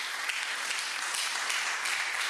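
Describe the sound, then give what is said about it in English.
A church audience claps their hands together during a worship song in a steady, dense wash of applause that fills the whole stretch, loud and continuous with no voices standing out. “Keep clapping your hands.”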